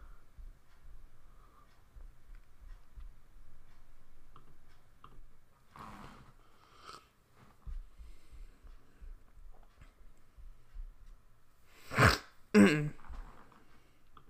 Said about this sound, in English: Real quick, I'm going to have to sneeze.